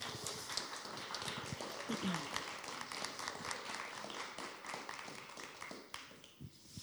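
A crowd claps steadily for several seconds, a dense patter of many hands with a few louder claps standing out, then the applause thins and fades toward the end.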